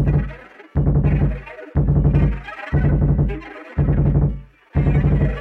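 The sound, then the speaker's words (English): Thumping film soundtrack music: six heavy, booming low hits land in a steady, slow pulse, each swelling then fading, with a harsh, gritty upper layer over them. No one speaks. “And there's a brilliant, like, thumping soundtrack to this bit, isn't there?”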